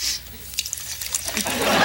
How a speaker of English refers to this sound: pours some water into a glass as he holds the mic down to catch this sound effect.